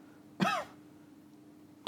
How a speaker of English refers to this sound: Ever since I worked on Dodgeball 3, I've just had this nasty cough.